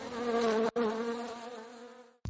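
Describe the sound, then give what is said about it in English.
A dense, steady buzzing of a swarm of bees drones loudly for about two seconds, broken by one brief cut early on, with no voices present. “Actually, he's permanently covered in bees.”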